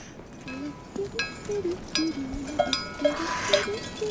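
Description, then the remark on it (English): Bells on pack mules passing right beside a hiker trekking to Everest Base Camp clank and jingle in an irregular, overlapping rhythm, several metallic strikes at mixed pitches ringing out at moderate volume over a soft background hiss. “Can you guys hear those bells? Guess what I'm walking next to? Mules!”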